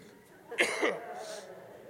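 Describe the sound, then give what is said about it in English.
A sharp cough bursts out and rolls into a brief throat-clearing rasp, then quiet room tone follows; no one speaks. “Come on, cough drops and Holy Spirit, help me.”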